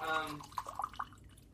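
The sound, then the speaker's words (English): A Coke being poured out, starting with a brief ringing, bubbly stream and breaking into a few quick gurgling glugs and drips, quiet. “That sounded really good pouring it out of there.”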